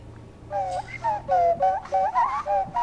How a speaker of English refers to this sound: It's a penny whistle? What was that? That was the nose flute. The nose flute. I've never heard of a nose flute.